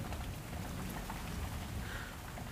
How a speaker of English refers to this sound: It begins to rain.